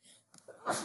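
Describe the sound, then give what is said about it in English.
A single sneeze: a brief breathy intake building up, then a sharp, loud, hissing burst at the end. It stands alone, with no talking over it. “Bless you.”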